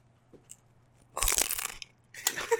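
Loud, close-up crunching of a tortilla chip right at the microphone, two bursts of brittle crackling separated by a brief pause, with no talking.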